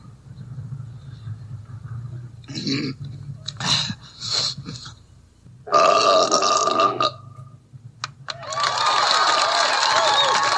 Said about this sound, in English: Oh, it's the belching contest. Frankly, I'm not too wild about this next event, but it has become a tradition here at Adams. The belching contest.